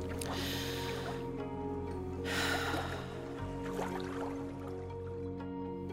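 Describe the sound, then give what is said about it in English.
Two slow, soft, even breaths with a faint sleepy snuffling edge from a young daughter falling asleep, over a steady low musical drone, with no one speaking. “Soon I hear her soft, even breath and sleepy snuffles.”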